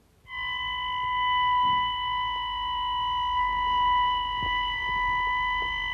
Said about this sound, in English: It's 5 o'clock in the morning and the alarm has just gone, and we're now going down to the ambulance to get in, and I don't know what the call is yet until we get downstairs.